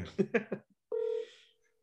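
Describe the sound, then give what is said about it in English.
A short burst of talking, then a single steady electronic ring tone of an outgoing phone call on speakerphone, thin and slightly tinny, fading out after about half a second. “I'll put her on speaker, see if you guys can hear her, see if it works. Do you guys hear the ringing?”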